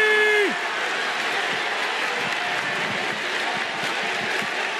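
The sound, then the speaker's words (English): A wrestling crowd roars and claps in a dense, sustained wall of cheering and applause after Kota Ibushi comes out to save Kenny Omega. It stays loud throughout, with no single voice standing out. “Listen to this crowd!”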